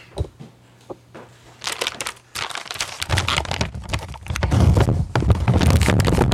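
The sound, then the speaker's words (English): A plastic bag of Chew and Bones bacon-flavored dog treats crinkles and crackles as it is handled, starting with sparse, scattered rustles and building into louder, dense, continuous crunching toward the end, with no talking. “So on the back of this chew and bones bacon flavored dog treats bag, There's a number for Pet Brands, which is located in Dublin, Ohio, and I guess they make the treats”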